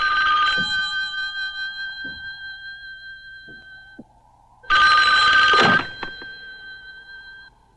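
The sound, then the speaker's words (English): In a film, an old-fashioned telephone bell rings loudly in two bursts, a call to a blind man from the phone installed in his dead mother's tomb; the first ring trails off into a lingering metallic hum before a second sharp, clattering ring that fades out. “Now the story is about Henry Mandor, who is a blind man who starts getting phone calls from his dead mother.”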